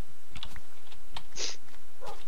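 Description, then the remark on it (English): A dog attacks a sheep: a few sharp barks and snarls with quick scuffling bursts over a low steady hum, no voices. “Right, the dog is attacking a sheep.”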